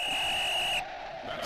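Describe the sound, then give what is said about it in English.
A steady, high-pitched whistle tone signalling that time is almost up holds for just under a second, then cuts off, leaving a softer, lower hum underneath. No one speaks. “There's that whistle again telling us we're almost out of time.”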